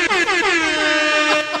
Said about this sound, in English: it was at the DuPont Country Club and people there, of course, playing golf, when a storm is about to hit and lightning's about to strike, what do courses do? They blow the air horns, okay? Like, that's not even exaggerating. No. It was so loud.